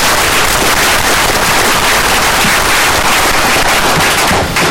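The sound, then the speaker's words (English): Loud, sustained applause from a crowd at a board meeting, given to three board members for their service, a dense crackle of many hands clapping at once that holds steady for several seconds with no voices over it. “So if we give a round of applause to all of you for that.”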